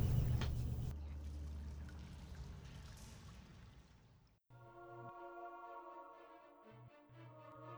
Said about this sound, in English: In the distance, from the vertical mine shaft that you came in, you can hear the trickle coming down. The continuous reminder that the storm and the rain still pours down outside.